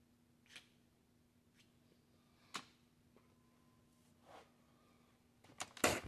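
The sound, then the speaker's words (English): A match is scraped repeatedly against a worn, rubbed-out striker strip: several brief, dry scratches at uneven intervals, ending in a louder, rapid flurry of strikes, with a faint hum. “I think that strip's rubbed out too.”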